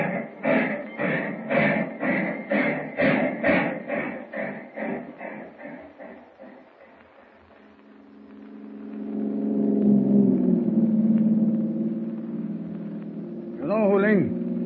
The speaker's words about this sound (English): Train starting. Brakeman's probably left the observation platform by now.